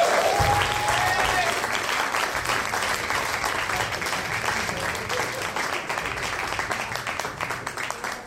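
Dense, sustained applause from an audience welcoming a storyteller at an open mic, a steady wash of many hands clapping at once, loud and unbroken throughout with a brief whistle near the start.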